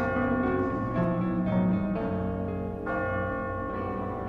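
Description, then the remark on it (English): A church bell rings repeatedly, each strike blooming into a rich, humming resonance that overlaps the next, steady and fairly loud with no voices. “I go, and it is done. The bell invites me.”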